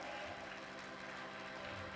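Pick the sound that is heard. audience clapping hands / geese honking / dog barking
audience clapping hands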